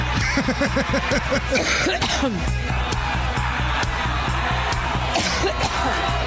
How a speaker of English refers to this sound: Excuse me. Thank you. Little thunder cough in honor of Pantsuit Patty's birthday.